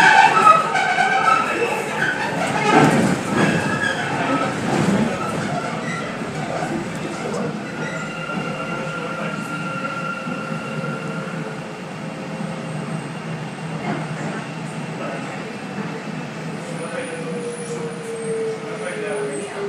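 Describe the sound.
A train rumbles steadily, with whining motor tones that rise and fall as it slows for a stop at West India Quay station, and muffled voices faintly under the noise.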